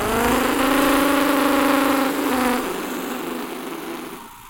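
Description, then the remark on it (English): A car engine runs with a steady, buzzing drone that dips and settles lower about halfway through, continuing at a slightly softer level with no voices, as the car is driven a short way down the road. “Damn car.”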